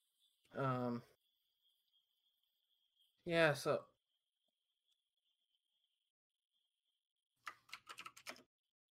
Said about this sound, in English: What are you looking up? I hear you looking up something. I was typing in my chat.